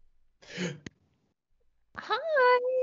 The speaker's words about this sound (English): Why was there a gasp there